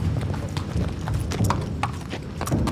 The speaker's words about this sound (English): The family just saddled up their horses. They're gonna ride out into a pasture, gather a bunch of cattle, bring them back to the pens.